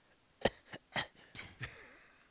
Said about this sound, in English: That was not convincing at all. That might be the worst fake cough I've ever heard.